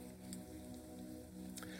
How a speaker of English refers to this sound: Now turn the cup over, carefully open the side with the juice.